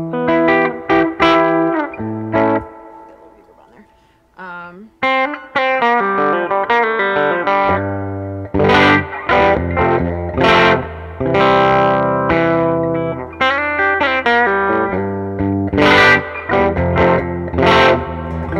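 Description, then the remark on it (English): Electric guitar played through a crunchy studio preamp pedal that mimics a Neve console, with the crunch turned down a little. Strummed chords and picked notes with a gritty, mildly distorted edge, loud and continuous with brief pauses, no voices. “it's definitely like a studio pedal, but I play it live all the time. I love it. It has this like crunch.”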